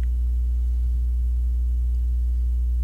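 A computer hard drive works hard, whirring in a steady, low mechanical hum with faint tonal overtones, unchanging in level for the whole stretch, noisy enough to make the desk vibrate, with no voices.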